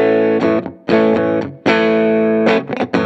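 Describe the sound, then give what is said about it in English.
An electric guitar played through a tube amp with the gain turned all the way down, giving a light crunch. Several loud, ringing chords are strummed with brief gaps between them, and a few quicker hits come at the end. “you can get a little crunch with the gain all the way down, but you really shouldn't get much.”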